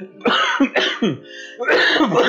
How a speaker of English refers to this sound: Shit. Okay, well, I'm not coughing up blood, so that's good.